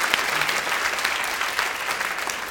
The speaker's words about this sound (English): Round of applause for the question.